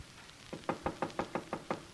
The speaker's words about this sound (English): Wise guy knocking on his own door. Is that a signal to you? It don't mean nothing to me. I'll open it.